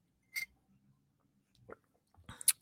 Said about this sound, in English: And with that, I'm going to leave you. I'm going to take a sip of my coffee here.